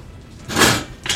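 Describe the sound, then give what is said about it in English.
A single sharp, breathy sneeze bursts out loudly over faint background noise, followed right after by the start of another hissy breath or sound. “Bless you.”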